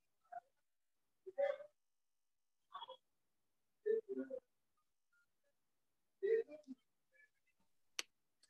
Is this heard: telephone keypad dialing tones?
yes